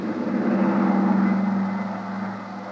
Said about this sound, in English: took over as pilot of the huge private two-engine plane that was waiting for us. Within a few minutes, we were airborne and on our way.